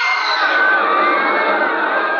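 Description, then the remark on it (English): A dense, loud, terrified roar of a huge crowd of thousands of people screaming at once during a trapeze act, a sustained wall of many voices with no pauses, steady in volume for the whole stretch. “I heard the terrified roar of thousands of throats, and I knew it was death.”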